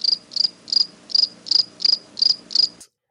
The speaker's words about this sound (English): Crickets.